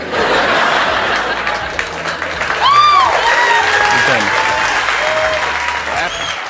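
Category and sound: crowd, audience cheering and applauding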